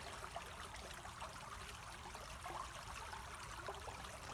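A soft, steady wash of flowing stream water with faint bubbling and trickling details, continuous and fairly quiet, with no voices.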